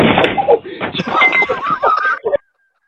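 A drunk man slams face-first into a front door fitted with a Ring doorbell: a dull thump and rattle, amid a burst of excited shouting and chatter from his drunk friends that cuts off abruptly.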